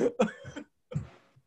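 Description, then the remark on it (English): A voice imitates coughing and hacking: a quick cluster of rough, throaty bursts, a brief pause, then one longer raspy hack that trails off. “Brenda Dixon started coughing and hacking up”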